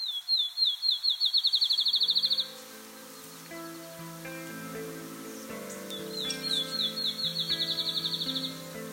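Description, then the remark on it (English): A field sparrow sings twice, each song a series of clear, high whistled notes that speed up into a rapid trill, heard over soft, gentle background music. “The field sparrow has a very lively song. It starts off with slow, repeated tones, then accelerates to a point where it almost blurs into a solid note.”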